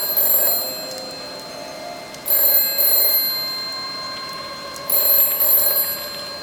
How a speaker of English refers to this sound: Don't answer that phone! Doctor Who, static. Don't answer it! Leave it alone!